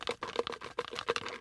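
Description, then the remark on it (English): Contest entries being shuffled in a bucket: rapid rustling and light clattering in several quick bursts, with no one talking. “I got everything in a bucket here, as you can hear. Hang on, I'm going to shuffle these up.”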